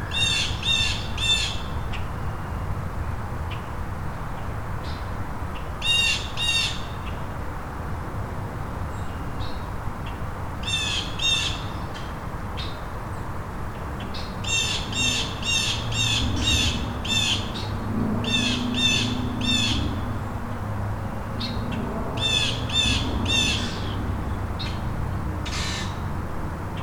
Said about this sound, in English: Crackles too. And if there's a predator over there, Or it could be the grackles and blue jays not getting along.